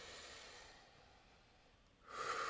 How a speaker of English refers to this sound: And now throughout the day, I practice meditation, you know, just like a quick minute. I'll close my eyes, do some deep breathing.